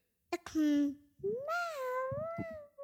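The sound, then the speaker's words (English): A child's voice imitates a cat, giving two drawn-out meows with gliding pitch, fairly loud, the second one longer and wavering. “Well, what's the cat say?”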